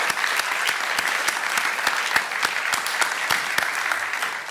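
Steady audience applause fills the whole stretch, a dense wash of many hands clapping with sharper individual claps popping through, sustained and fairly loud with no voices on top.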